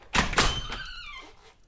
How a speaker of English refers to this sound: One day, Lex rushed home and burst through the door.